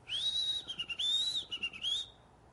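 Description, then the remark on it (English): A person whistles a warbling, birdlike phrase for about two seconds, sliding up and down in pitch with short fluttering breaks. It's clear, with no talking. “He opened his mouth, and bird song came out of his mouth.”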